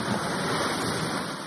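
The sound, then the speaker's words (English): Ocean waves sleep sound playing as a steady, dense rushing wash at moderate volume, with no distinct surges or individual crashes, and no one speaking. “Let's first of all start with what they described as being waves crashing.”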